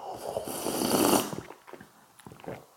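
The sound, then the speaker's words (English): A loud, airy slurp of a sip of drink swells for over a second with a hissy, breathy texture, then trails into a few softer gulping and smacking sounds. No one speaks. “Might try a different type of slurp. A little, maybe a louder one.”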